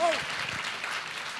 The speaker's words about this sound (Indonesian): Kita berikan tepuk tangan buat tahun yang baru ini.